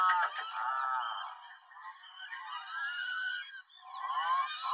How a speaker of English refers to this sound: That's a bird? Yes. Oh. God. Yeah, this just sounds like what I think Americans sound like in European museums.